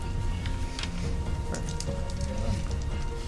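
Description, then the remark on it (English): Steady, heavy rain pours down without letup, a dense wash of patter with scattered sharper drops spattering. No voices can be heard. “It's definitely tipping down rain”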